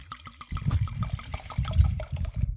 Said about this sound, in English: I poured myself a glass of the next wine.